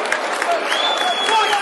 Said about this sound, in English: Good applause for that foul. Fair-minded applause from the crowd around me for that.